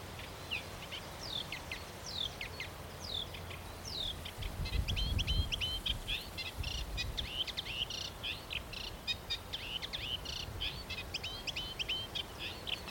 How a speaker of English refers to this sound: Experiments with other species of warblers have shown that females prefer males with a very rich repertoire in their songs